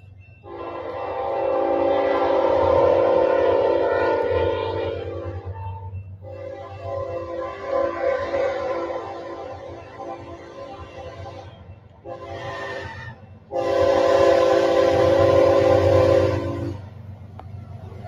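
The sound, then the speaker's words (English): A train rumbles past while its horn blares in several loud, sustained blasts, a short one near the end, then a final long blast over the steady low roar. “I'm obsessed with trains. I love big machinery.”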